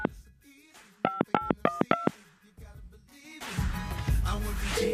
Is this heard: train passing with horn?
no